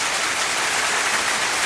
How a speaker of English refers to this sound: Wow, just keep the applause going. I didn't know how long it went for.